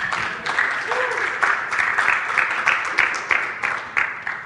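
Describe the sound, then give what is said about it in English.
An audience claps for Jesus in a steady, rhythmic beat, the many hands blending into a dense wash of applause with regular sharper accents, moderately loud throughout. “You can clap for Jesus.”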